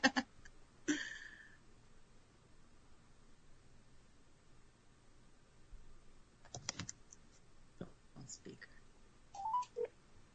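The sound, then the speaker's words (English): Telephone dialing tones: a short electronic beep near the start, then a scattered series of brief keypad tones and soft clicks, fairly quiet over low background hiss. “Okay, here we go. We're gonna dial.”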